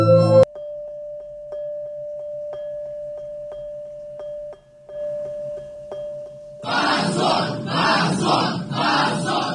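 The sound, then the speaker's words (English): A steady electrical hum with faint ticking gives way to a loud courtroom crowd suddenly shouting in protest at a prison sentence, their voices rising together in a rhythmic, chant-like clamor of "Shame on you" that fills the last few seconds. “Immediately, everybody started shouting. Shame on you. Shame on you.”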